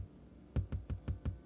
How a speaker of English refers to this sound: I woke up to hear knocking on glass. At first, I thought it was the window, until I heard it come from the mirror again.